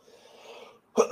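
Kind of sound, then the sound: human body sound, cough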